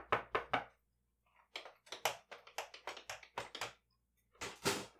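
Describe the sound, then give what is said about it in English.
Sharp knocks rap on a professor's laboratory door in several quick bursts, with short pauses between the groups. No one speaks. “Just as the professor was about to pop open a celebratory, non-caffeinated drink, a knock was heard at his laboratory door.”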